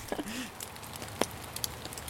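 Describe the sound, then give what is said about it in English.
Light rain falls softly as two people stand under one umbrella, scattered drops ticking irregularly against a faint hiss, with a brief low murmur near the start. “7 years ago, it rained slightly, and we both stood under the same umbrella.”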